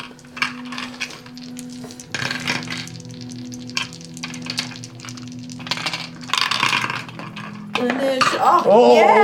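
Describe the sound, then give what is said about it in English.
Several dice clatter and tumble across a tabletop in scattered bursts as players roll for initiative in a tabletop game, with voices talking and laughing over the rattling throughout. “You're rolling the wrong dice for initiative.”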